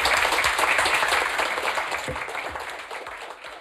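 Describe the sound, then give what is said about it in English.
A crowd applauds the guests with dense, steady clapping that starts full and gradually thins and softens over a few seconds, with no voices standing out. “And let's have a round of applause for these guys.”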